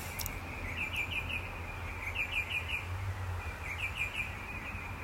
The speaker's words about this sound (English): I just so love the bird song.